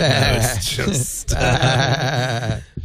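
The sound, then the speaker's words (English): A person's voice imitates a goat's bleat, a loud, wavering, nasal cry held for a few seconds with a brief break in the middle. “Remember, bah means no.”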